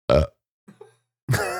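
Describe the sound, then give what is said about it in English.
Someone imitates burping: two loud, throaty belches separated by a brief pause with a faint gulping sound between them. No talking. “What was that with the burping?”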